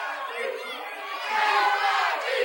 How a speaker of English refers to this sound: The crowd's starting to chant, JYD, JYD, JYD.